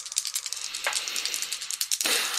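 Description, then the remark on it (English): Dice rattle and clatter in a quick, dense run of sharp, bright clicks for a couple of seconds, ending in a slightly louder burst of tumbling. No one speaks. “The dice are not liking me today.”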